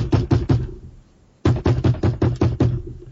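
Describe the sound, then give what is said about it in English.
Loud knocking on a hotel room door at 2:30 in the morning: a quick burst of four raps, a brief pause, then a longer, insistent run of about eight more knocks, with no voices. “somebody knocked on the door at like 2 o'clock in the morning the night that you left”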